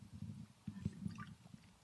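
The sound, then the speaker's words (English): Soft sounds of water being sipped or poured, a few wet gulps and small liquid trickles in quick succession, quiet and with no talking, as someone drinks water for something stuck in the throat. “Something stuck in my throat. Give me some water.”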